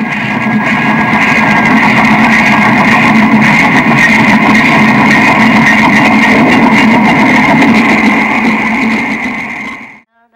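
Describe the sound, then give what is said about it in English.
A steam train in the 1955 film Patha Panchali rolls past hauling several carriages, a loud, steady mechanical roar with rattling clatter and a sustained high whine, holding constant for about ten seconds before cutting off abruptly. “A steam train approaches, hauling several carriages.”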